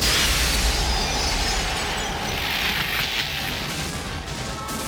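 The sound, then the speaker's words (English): A loud, sustained wash of crashing and shattering glass as a mirror is smashed, mixed with a deep rumbling roar, continuing steadily for several seconds with no voices. “When she smashes the mirror, it's like they run through a demo reel of every unfinished CGI effect that just wasn't quite ready yet for a low-budget movie in 1992.”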